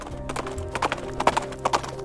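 Horse hooves clip-clop at a steady walking pace, sharp knocks falling in quick pairs, clear, over a faint humming background.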